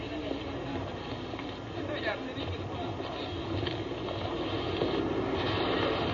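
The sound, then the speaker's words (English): A busy Ginza street in Tokyo on a typical Saturday night in spring: a dense, steady wash of crowd murmur and traffic rumble, growing slightly louder toward the end, with indistinct voices throughout. “This is the way the Ginza sounds on a Saturday night, typical Saturday night in spring.”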